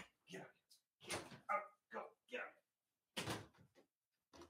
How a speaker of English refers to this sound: Oh, that dog. Hold on one second. Damn it.